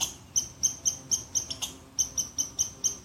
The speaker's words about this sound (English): Now I can let the squirrel know I mean no harm through non-reaction to the alarm call.